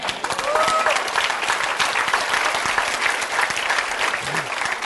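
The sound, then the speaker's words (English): A large audience claps steadily and densely for several seconds, the applause filling the space without pause, with a brief whistle or cheer rising near the start. “And we clap, don't we?”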